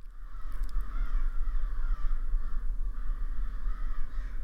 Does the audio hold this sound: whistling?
no